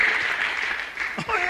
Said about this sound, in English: You're clapping because we're not involved in whatever was going through.